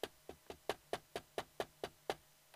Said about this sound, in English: And so on a Saturday night, they were singing and playing and meeting at some person's house, some young woman's house, and Ibronka was by herself, enjoying the party, when a knock came on the door.